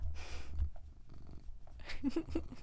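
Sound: cat purring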